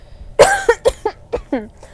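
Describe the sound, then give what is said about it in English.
A stifled cough breaks out, followed by a few short, muffled throaty bursts in quick succession, moderately loud, as someone tries to hold the coughing back. “Guys, I'm like trying so hard not to cough right now.”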